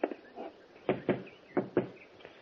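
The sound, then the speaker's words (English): Four knocks on a door in two quick pairs, moderately loud, with a faint background hiss and no voices. “get the door.”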